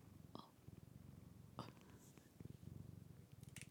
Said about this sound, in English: Little Liam's here to say goodbye. Wait, purring.